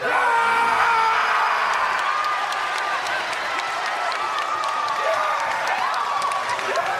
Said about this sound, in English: Now, as you hear from the reaction, that was a whole lot of fanfare. People were cheering and clapping it up because now we get the culmination of about a good, almost a whole solid year's worth of storyline between Gargano and Dexter Lumis.